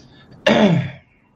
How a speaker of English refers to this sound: Now, I'll be clearing my throat a lot today. That chest cold really came on strong Saturday.